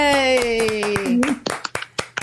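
A short round of applause from a small group on the community radio show Ginger and Nuts: steady clapping under a long, falling-pitched cheer, then a few sharp, separate claps trailing off.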